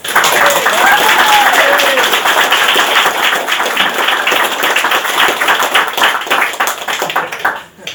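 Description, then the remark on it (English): A conference audience bursts into sustained applause to welcome a speaker, a dense, steady wash of many hands clapping that holds loud for several seconds before gradually thinning out, with faint whoops rising over it early on. “So mind if you can have a round of applause, please.”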